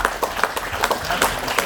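A short burst of applause: a small group clapping in quick, uneven crisp claps that overlap into a steady patter at moderate loudness, with no voices.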